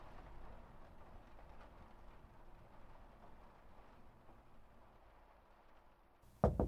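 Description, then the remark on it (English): Steady, soft rain patters and hisses outside at a low, even level, with no voices, until a sudden louder burst of noise breaks in at the very end. “And outside it begins raining.”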